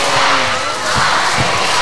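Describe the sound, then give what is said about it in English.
A large basketball crowd at a Cairns Taipans game roars loudly and continuously as a player goes to the free-throw line, a dense wall of cheering and shouting with a few dull thuds underneath. “These are crowds loud. They must be hungry.”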